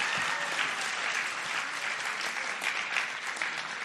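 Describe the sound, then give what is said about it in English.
Steady, dense applause from a large audience applauding themselves, a continuous wash of many hands clapping at even loudness for the whole stretch, with no voices standing out. “Give yourselves another round of applause.”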